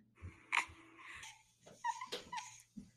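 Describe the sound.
A voice imitates a baby's whimper: a few short, breathy whining sounds with soft snuffly breaths between them, fairly quiet, with no words spoken.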